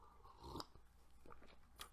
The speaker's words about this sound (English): Let me take a sip of this wine right here. I'm drinking red wine.